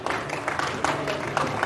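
An audience at the Live Pundit Showdown applauds to vote for a winner, a dense, steady patter of many hands clapping at an even loudness throughout, with no voices rising above it.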